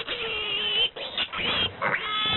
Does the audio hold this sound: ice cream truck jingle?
no